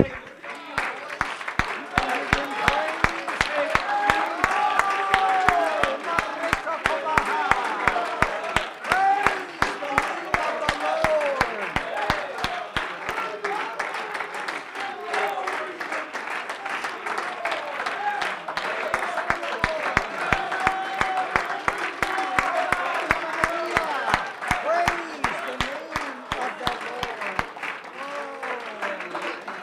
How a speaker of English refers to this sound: Let's do that right now. Come on, you can clap your hands.